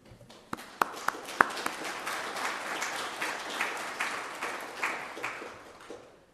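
A round of applause from a group, many overlapping claps forming a steady crackling wash with a few sharp individual claps at the start, lasting about six seconds before tapering off.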